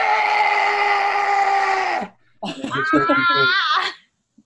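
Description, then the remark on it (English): A voice imitates a kobold's shrill scream as it comes running out: one long, steady, strained shriek for about two seconds, then after a short gap a wavering, warbling second screech, loud. “So this kobold comes running out screaming.”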